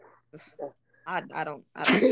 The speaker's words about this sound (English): I sneezed 2 times. What? Oh, you sneezed? Okay. Yeah, 2 times.